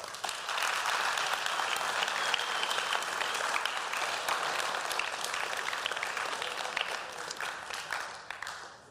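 Sustained applause from a large audience, clapping for a man who gave his life to Christ: a dense, steady wash of many hands clapping at once that holds strong for several seconds before tapering off at the end.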